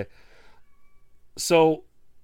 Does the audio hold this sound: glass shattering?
no